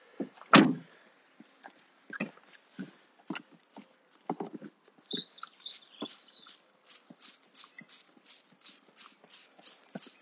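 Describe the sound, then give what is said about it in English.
Repeated hard chipping and scraping as a person clears ice, irregular knocks at first, then quicker rhythmic strikes, fairly loud with no talking. “you're going to enjoy this bit because it's going to be me literally clearing some ice.”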